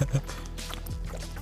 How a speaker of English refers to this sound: That microphone is not even capturing what it normally sounds like. It's so much worse. Anyways, now that I'm hydrated, I've wet my whistle and I'm good to go for the next four goals.